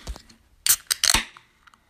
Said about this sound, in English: So with that said, let me open this can.